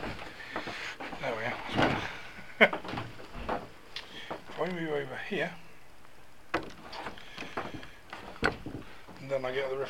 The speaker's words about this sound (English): Got a reflection of the door. Hold on, I'm gonna go close that door.